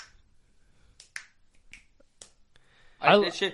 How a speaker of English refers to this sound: I don't know how to snap